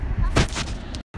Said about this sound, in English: And what do you hear roaring in the distance? The sea. That's right.